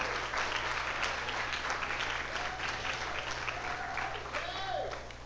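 Sustained applause from a church audience, a dense wash of many hands clapping steadily for about five seconds, with faint whistles or cheers rising briefly near the end.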